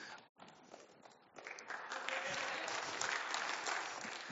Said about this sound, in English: And the clap kind of progressed this way all throughout.